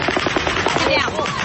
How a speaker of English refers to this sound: It was just after 10 p.m. 2 years ago when the gunfire started.